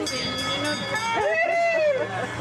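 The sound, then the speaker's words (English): A small tourist train in Westport runs its circuit of the town, its steady rumble carrying gliding, whistle-like tones that rise and fall, with indistinct voices murmuring underneath. “Westport is a small tourist House. Train that does a circuit of the town.”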